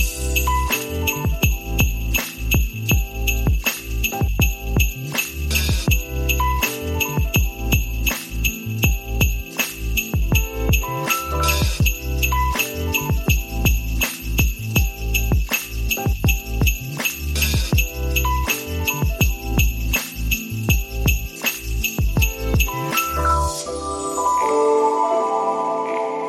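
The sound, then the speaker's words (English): Bright jingle bells shake in a quick, steady rhythm over a full, loud musical backing with thumping bass beats, playing continuously before thinning out at the very end. “Well, what I'll do is I'll probably be a Scrooge, but I'll put some jingle bells over it in production, all right?”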